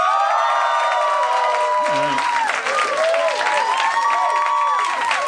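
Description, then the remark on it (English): An audience cheers and claps steadily for about five seconds, a dense wash of whoops, shouts and applause at a consistently loud level. The audience is voting by cheering for a man not to drink so an experiment can continue. “How many, by cheering, how many of you out there wish he wouldn't drink to continue the experiment?”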